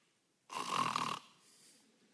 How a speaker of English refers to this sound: If you go to the Septuagint, the Greek translation of the Old Testament, it's rendered snoring. He was snoring.